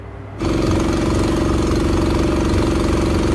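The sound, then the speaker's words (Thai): A boat's engine starts up and runs steadily, a loud continuous rumble with a strong low hum that holds level after a brief quieter moment at the beginning, as the boat surveys floodwaters around the Na San Klang community in Ubon Ratchathani, Thailand. No voices are heard. “ตอนนี้ลงเรือสำรวจลำน้ำกันนะคะของชุมชนหน้าสารกลางค่ะบ้านหนองแกบ้านหนองกลางตำบลจระแนเราเองค่ะมองไปทางไหนก็มีแต่น้ำนะคะ”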